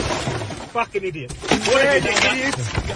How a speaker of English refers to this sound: Road rage so bad these days, honey. This punches the window.